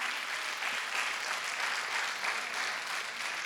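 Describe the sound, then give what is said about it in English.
An audience claps their hands for Jesus in steady, dense applause, a continuous wash of overlapping claps holding an even loudness throughout with no voices on top. “Give Jesus a hand clap.”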